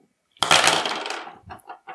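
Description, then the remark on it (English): Five dice, rolled in a game, clatter loudly onto a hard surface in a bright rattling burst that fades, followed by a few small scattered taps as they settle, with no talking. “Oh, that dice roll.”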